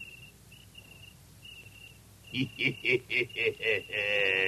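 A thin, high cricket chirp trills faintly on and off, then six louder, evenly spaced chirping bursts pulse before a sustained buzzing tone takes over.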